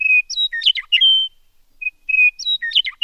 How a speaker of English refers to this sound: Before we talk about the fight, why don't we hear the contenders? So this is, first, the meadowlark.